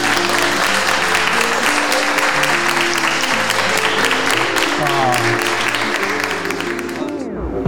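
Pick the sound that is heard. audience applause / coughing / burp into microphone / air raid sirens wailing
audience applause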